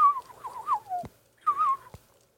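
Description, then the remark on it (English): Someone whistles a short, mournful tune imitating a sad Irish penny whistle melody in two wavering phrases, fairly soft, each phrase ending with a brief click. “I like that penny whistle sound from Titanic that means something sad and Irish is about to happen.”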